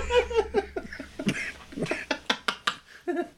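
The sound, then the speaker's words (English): A man coughs mixed with stifled laughter: a run of short, sharp bursts and snorts in an uneven rhythm, like someone trying and failing to hold back a laugh. “Here comes the cough.”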